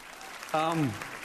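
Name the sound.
applause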